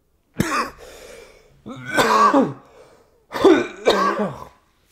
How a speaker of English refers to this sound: I hate myself. God. This is why I was afraid to pod today. Fucking coughing like a bitch.